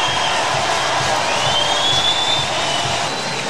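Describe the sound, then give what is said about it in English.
A large baseball stadium crowd at Wrigley Field gives a standing ovation to Chicago Cubs player Wilson Contreras at what may be his final at-bat, applauding and cheering in a steady, sustained roar, dense and fairly loud throughout, with a faint whistle rising above the noise. “might be the final at-bat of the day, which means it could be the final at-bat as a Chicago Cub for Wilson Contreras here at Wrigley Field, and they give him a full standing ovation.”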